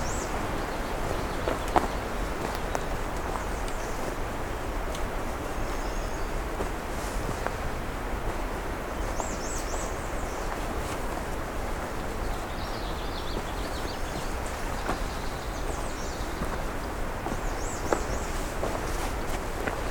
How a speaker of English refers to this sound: You got a common yellow throat song as well.